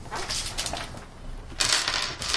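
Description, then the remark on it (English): Dice are rolled for travel checks, clattering and rattling for a couple of seconds in a dry, continuous tumble, swelling into a louder burst of clicking toward the end. No one speaks. “All right, roll me some travel checks.”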